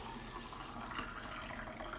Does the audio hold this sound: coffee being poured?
yes